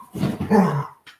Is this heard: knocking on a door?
no